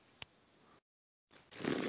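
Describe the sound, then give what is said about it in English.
A hot drink, heated for a minute in a microwave, is slurped in one loud, airy, hissing pull that rises quickly and holds briefly, following a small click and a moment of quiet. No one speaks. “Oh, that was a slurp.”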